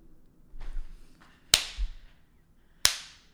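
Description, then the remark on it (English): Two loud, sharp hand claps, spaced a little over a second apart, each snapping off quickly, with only a faint low rumble in between and no talking. “Why are you clapping?”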